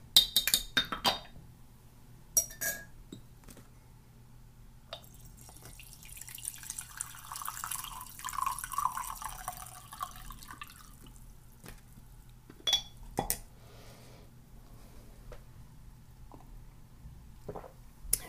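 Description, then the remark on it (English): Sounds of green tea being made: sharp spoon clinks against a cup, trickling and dripping liquid, and a soft swirl of the cup being stirred in the middle, with no talking. “I think it's time for some green tea, I reckon. Give that a bit of a stir.”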